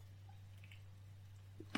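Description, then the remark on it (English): Soft, wet mouth noises of someone sipping water, ending in one brief, sharper slurp near the end, over a steady low electrical hum. “This water is wonderful.”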